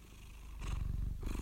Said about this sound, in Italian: Ora si è messa a fare le fusa.